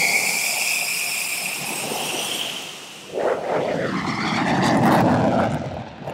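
The engine of an F-16 Viper fighter jet in flight roars loudly and continuously, a high turbine whine riding over broad rushing noise at first, then giving way to a deeper, surging rumble. No one speaks.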